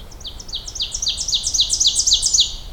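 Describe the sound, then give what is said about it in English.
An ovenbird sings along a trail, a rapid series of repeated two-note phrases that grows steadily louder toward the end, ringing out clearly over faint background hiss. “One loud oven bird somewhere right along the trail here.”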